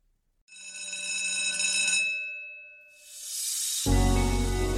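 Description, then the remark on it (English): A bell rings loudly and continuously for about a second and a half, then gives way to a bright hiss and a heavy, roaring rumble. No one speaks. “Well, you heard the bell. Class is dismissed.”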